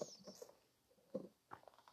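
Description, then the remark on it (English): Soft slurping sips of tea and small wet mouth sounds in short bursts, with a brief faint hiss at the start and a sharp high clink at the very end. “Let me just take a sip of my tea here.”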